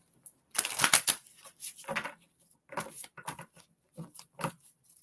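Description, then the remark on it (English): A deck of cards being shuffled, with a long riffling burst followed by several shorter, crisp flurries of flicking and sliding cards, no voices present. “These are such great cards. I love them. Louise. Oh, let me shuffle them.”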